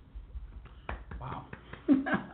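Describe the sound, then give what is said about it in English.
A few tiny, soft hand claps, light quick pats spaced unevenly over a couple of seconds, with faint voices murmuring underneath. “No, but it's still a tiny clap, though, so I don't blow out the mic.”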